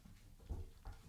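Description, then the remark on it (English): Two short, low rumbling growls from the speaker's puppies, faint, the first slightly longer than the second, with quiet background noise between them. “Would one of y'all like to come up here and get in front of the microphone and make those sounds?”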